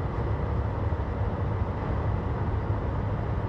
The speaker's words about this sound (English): This is a goofy looking truck coming up on my butt. Come around me, old pickup truck.